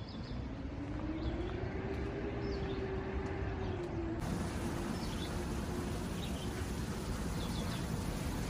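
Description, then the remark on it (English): Heard while walking under a bridge, cars driving over it make a steady, dense low rumble with a droning hum that wavers in pitch, while small birds chirp faintly above the noise. No one speaks. “So in just a minute, we will be walking under the bridge while cars are driving over the bridge.”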